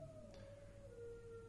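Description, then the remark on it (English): A long, wavering howl from dogs in the morning in Panjim, Goa, a single sustained tone that slowly drops in pitch, faint against a low background rumble with no one talking. “The dogs are really at it this morning.”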